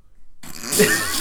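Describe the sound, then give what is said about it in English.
A short, rough vocal rasp rises out of silence, a person attempting a growl that comes out strained and breathy, ending in a brief louder burst. “You tried it once and it wasn't terrible.”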